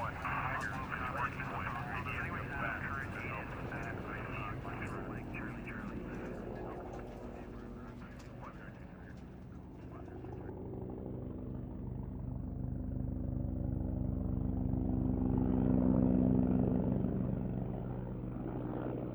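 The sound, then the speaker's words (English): A steady, throbbing helicopter drone fills the air overhead at night above a frigid wilderness, swelling louder toward the end, with muffled, indistinct voices mixed in beneath the engine noise. “Running through the frigid dark wilderness as helicopters buzzed overhead was hard enough without also having to bind up his sphincter.”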